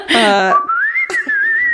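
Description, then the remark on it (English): A person whistles a single sustained note that rises and wavers in pitch, fairly loud, right after a brief voiced sound at the start. “Isn't that the most beautiful pneumonia whistling you've ever heard?”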